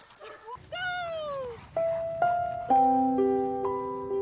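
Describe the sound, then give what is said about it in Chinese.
A dog, one of two sibling pet dogs, yips and whines in a string of high, drawn-out cries, some sliding downward in pitch, fairly loud over a steady low rumble. “呢個係哥哥，大面啊，有少少皺紋。呢個咧就係細佬，好聰明嘅，好中意玩。”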